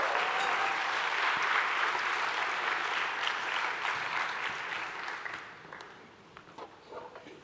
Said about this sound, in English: Guys, help me in the crowd. I can't see. Oh, we got one? All right. Hey, give these kids a hand.